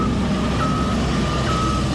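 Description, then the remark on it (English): Heavy earth-moving equipment rumbles with a loud, steady engine drone while a high electronic reversing beep sounds in long repeated tones over it, during road construction work in the Aseng North constituency. “Earth-moving equipment humming their way throughout the constituency.”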